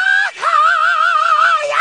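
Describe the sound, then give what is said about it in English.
A person lets out a loud, sustained, high-pitched yell at a cup of hot tea. It breaks briefly near the start, then holds as one long wavering cry for over a second. “Blow on it, don't yell on it.”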